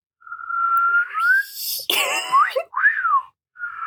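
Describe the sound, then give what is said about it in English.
Someone tries a catcall wolf whistle: a thin rising tone, a breathy rush of air, then a wobbly rise-and-fall whistle that never quite comes out clean. No talking. “I can't whistle like that.”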